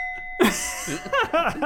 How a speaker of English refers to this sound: I'm excited to share. Let's ring the bell and kick it off. Bong!